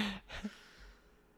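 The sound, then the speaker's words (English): A short burst of exaggerated, heavy breathing: a couple of quick, forceful breaths, one drawn in like a gasp, then fading into quiet. “And then she started, stop breathing like that.”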